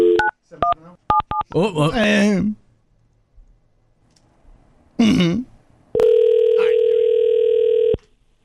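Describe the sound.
A rapid run of touch-tone dialing beeps as a call is placed to a man's wife, then a brief voice, followed by a long, steady, loud telephone ring tone lasting about two seconds.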